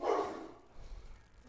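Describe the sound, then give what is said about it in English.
A dog gives a single short bark at the start, fairly quiet, followed by low background rumble and no talking. “You've upset my dog now.”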